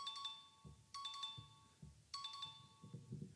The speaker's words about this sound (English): Wait, hang on a second. Sorry, I've just got a phone call coming through.